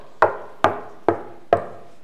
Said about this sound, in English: And so there is a knock at the door.